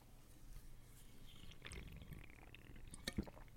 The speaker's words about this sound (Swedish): Ja, det där är faktiskt ett monsterljud alltså. Eller hur? Lite? Ja. Det är en stor burk, hör man. Man kanske hör det där burkljudet.